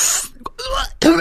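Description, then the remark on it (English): A voice imitates a fit of choking coughs from inhaling unfiltered cigarette smoke: a few harsh, raspy bursts with short gaps between them, fairly loud. “I'm choking, I'm coughing, I'm about to throw up and I'm coughing.”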